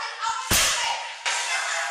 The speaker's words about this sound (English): The LAPD says during the struggle, both body cameras fell to the ground.